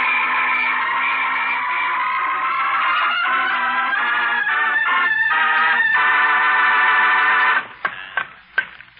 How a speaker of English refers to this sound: We got him. I better whistle for help, too.